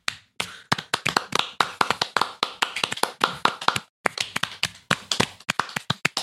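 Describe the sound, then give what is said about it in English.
Several people clapping at once, with claps layered so it sounds like many: a dense, uneven patter of sharp hand claps that overlap with no steady rhythm, pausing briefly midway before resuming. Nobody speaks. “We got to layer the claps so it sounds like a lot.”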